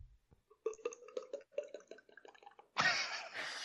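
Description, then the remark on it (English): A voice mimics wine glugging into a glass with a quick, rhythmic run of bubbly, hollow gulps, clear, then a sudden burst of breathy hiss at the end. “It's the same way that I figured out I could do the sound of a wine pouring into a glass.”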